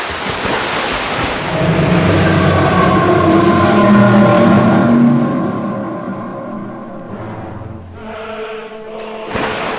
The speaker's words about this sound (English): When suddenly, they stopped, and all became eerily silent, apart from the roar of the sea.